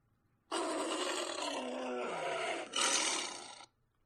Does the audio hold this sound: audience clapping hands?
no